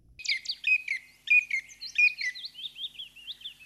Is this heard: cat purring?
no